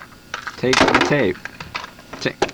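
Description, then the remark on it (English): The door of a teleporting machine opening with a wavering, sliding tonal sweep, most likely imitated by a voice. It rises and falls for about half a second, fairly loud, followed by softer clicks and rustles. “It's open the door.”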